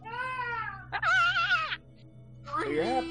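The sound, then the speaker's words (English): A loud, strained human scream with a high, wavering pitch, rising out of a lower vocal sound, then breaking off and returning as a second shorter, warbling wail. “Can I just let out like a really loud scream?”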